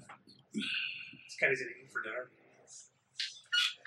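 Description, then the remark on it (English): A bird squawks in a few short, raspy bursts, with people talking quietly around it. “What kind of bird is that?”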